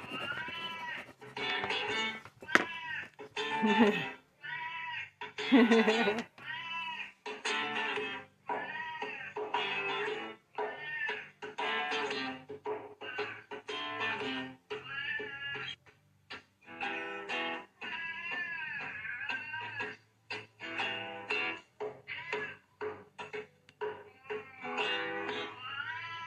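A cat meows and yowls repeatedly for nearly half a minute, loud, with drawn-out wavering cries and short bursts in an irregular rhythm, like a caterwauling complaint.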